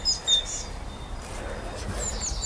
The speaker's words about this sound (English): Blue tit.